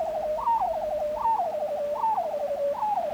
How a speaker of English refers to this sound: That is one of the most amazing sounds I've ever heard. Tell me about recording the sounds of bearded seals.